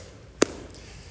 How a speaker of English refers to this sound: I got one more cough. Hold on. Gross.